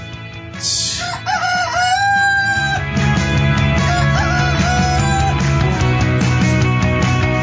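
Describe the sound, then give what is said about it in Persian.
A rooster crows loudly, a long, wavering cock-a-doodle-doo, with a steady low hum and more drawn-out crowing continuing underneath. No one speaks. “خروس ها چقدر خوشحالن از این موضوع.”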